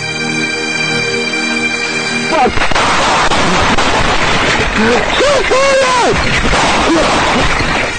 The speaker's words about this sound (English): Oh, the gunfire, officer down! Gunfire, officer down!